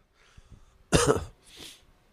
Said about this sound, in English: I just want this coughing to stop. I want to cough the last of this fog juice out of my lungs.